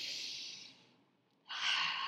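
Someone sniffs an essential oil with two long, airy breaths, the first trailing off, then a brief pause before a second, stronger one. No talking.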